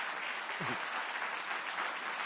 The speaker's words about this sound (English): I want to ask you to just welcome him up here with a round of applause.